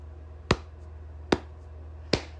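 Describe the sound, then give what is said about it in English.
Three sharp, fleshy slaps of a hand on a knee, a grandpa-style knee slap, evenly spaced about a beat apart, each a crisp smack that fades quickly over a low steady hum. No one speaks. “But a universally recognized sound is the grandpa knee slap.”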